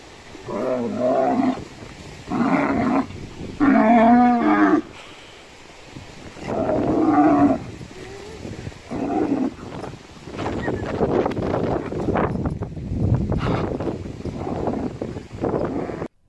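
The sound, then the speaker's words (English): A cow playing fetch with a ball moos loudly several times in drawn-out bellows, then a stretch of scuffling, bumping and windy noise follows, with no talking. “You know, that cow was playing fetch with a ball, as you saw and heard.”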